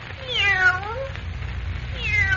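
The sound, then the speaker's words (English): A fawn-colored Siamese cat, held by Clark Kent, meows twice: a long, drawn-out, falling cry followed after a pause by a second meow that starts as the sound ends, over a low steady background hum. “Eagerly, Perry White hurries across the room to where Clark Kent stands holding the fawn-colored Siamese cat, his eyes blazing with excitement.”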